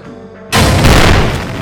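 A low, steady tonal hum gives way after half a second to a sudden, loud explosion of a briefcase bomb left in Hitler's meeting room at the Wolf's Lair, shaking the facility, its deep roaring rumble continuing without fading until the end.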